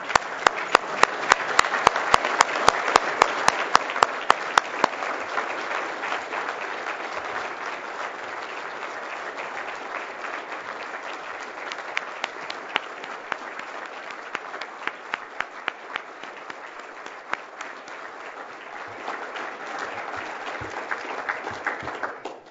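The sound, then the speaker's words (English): A large standing audience applauds the Minister of Finance of Ontario steadily for over twenty seconds, dense clapping filling the room, louder at the start and then holding a sustained, even roar of hands with occasional sharper claps. “So if I ask all of you in the room to stand and join me in a round of applause for this Minister of Finance.”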